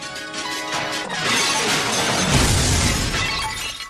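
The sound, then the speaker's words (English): A ceramic display-model vase in a shop, with blue flowers, little squiggly lines all over and handles, shatters with a loud, sustained crash. Brief ringing tones give way to several seconds of dense clattering and scattering fragments, with no voices. “we were looking for a vase of some kind with these sort of blue-type flowers”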